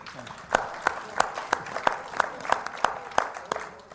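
An audience applauds, a steady wash of clapping with a few sharp, evenly spaced claps standing out in a regular beat, moderately loud throughout.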